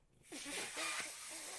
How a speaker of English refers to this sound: What am I doing? What's it look like I'm doing? It looks like you're trying to blow up some balloons. Yeah, no shit.